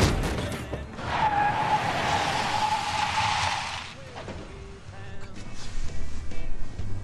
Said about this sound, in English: What the fuck was that, dog? Holy shit! What? Man, we done ran over a Chinaman. You're saying there's a Chinaman under this truck? What part don't you understand? There's a Chinaman stuck underneath the fucking truck.